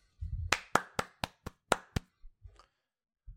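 A short burst of hand clapping, about seven sharp claps in a loose rhythm, followed by a few soft low thumps and then quiet.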